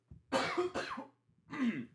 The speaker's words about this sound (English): Dude, if you're listening to this pod and you hear me coughing, it's because I'm literally dying.